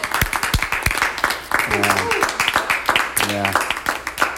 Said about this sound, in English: So let's clap again.